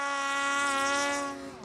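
A snowmobile heading this way whines with a steady, high, buzzing engine drone rich in overtones, holding a constant pitch and loudness before dipping slightly at the very end. No one speaks.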